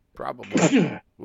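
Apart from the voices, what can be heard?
sneeze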